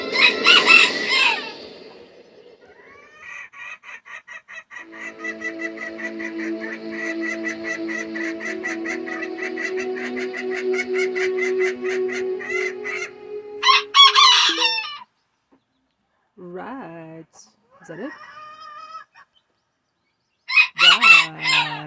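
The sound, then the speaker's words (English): A rooster crows loudly, one long drawn-out call, followed by shorter rising calls and brief bursts of scratchy noise, with no talking. “Jeez, what a fucking noisy bird.”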